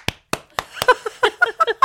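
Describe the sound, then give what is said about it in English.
Hands clap in a steady, even rhythm, each sharp crack about a quarter second apart, a big clap given for a child. After the first few claps, voices join in over the continuing clapping. “And here's a big clap for you.”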